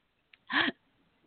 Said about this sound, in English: And I'm coughing. Hey. I'm almost like coughing, choking right when you answered. I apologize. That's so embarrassing. I was taking a sip of my soda and...